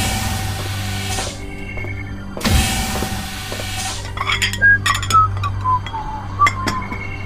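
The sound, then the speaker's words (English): Dishes clink and clatter while being washed, with bursts of running water and a steady low hum underneath; several sharp ceramic knocks and chimes ring out in quick succession. “These dishes won't do themselves.”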